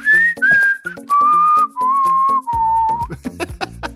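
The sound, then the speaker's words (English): A person whistles a short, bright jingle melody in clear sustained notes that step downward, with a rhythmic backing of plucked or percussive music beneath it and no talking. “I got to tell you, yesterday I was walking in the hall and I was whistling it.”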